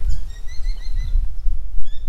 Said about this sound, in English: Walking amongst the gum trees, there are birds jumping between branches.